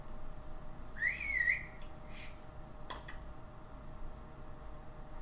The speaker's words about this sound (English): Okay, you guys have a special whistle. I go, what's the whistle? Whistle, whistle back. Whistle, whistle back? That's... Yeah, so I guess whistle twice and then go backwards.